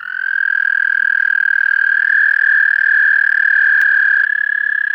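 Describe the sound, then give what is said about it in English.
A frog gives one long, unbroken musical trill at a steady high pitch, loud, holding for several seconds with no pauses and no voices. “Then what frogs do we hear after that?”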